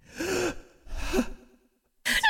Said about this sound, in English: You hear a gasp